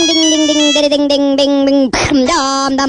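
A mobile phone ringtone plays loudly, made of buzzy, sustained tones that shift pitch only slightly, broken by a brief noisy burst before the tone resumes.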